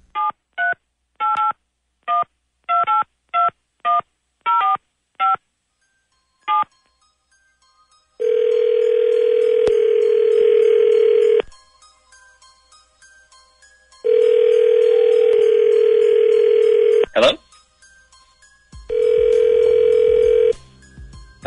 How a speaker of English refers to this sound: All right, so you dial yours. Let me get you your dial tone, and then it's off to the races. Whoever dials first.